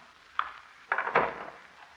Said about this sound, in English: she's unlocked three different locks to open that door.